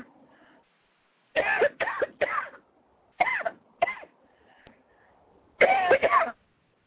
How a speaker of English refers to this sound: coughing our way to the end of the show.